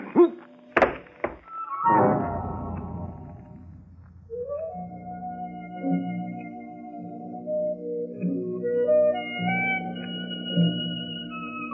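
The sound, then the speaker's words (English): A heavy blow to a person's head lands with a sharp double thunk, knocking him out, followed by a fading rumbling whoosh and then a sustained, wavering ringing drone, like dizziness after a knockout. No one speaks. “If you're hit on the head hard enough, you get knocked out.”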